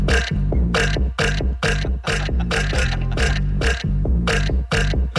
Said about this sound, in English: No, wait. You're going to get the screams and the burps and the laughs.